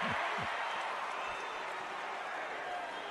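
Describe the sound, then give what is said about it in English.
A large arena crowd at a summer league basketball game chants "overrated" at a player in unison, a dense, steady roar of many voices filling the space from start to finish, loud and continuous with no single voice standing out. “Crowd chanting overrated at Chet Holmgren in a summer league game.”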